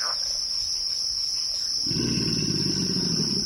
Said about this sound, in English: Kim Wilson recorded this chorus of bird songs, frog calls, alligator grunts, and the squeal of an amphibian being skewered by a heron in the primordial waters of the bayou.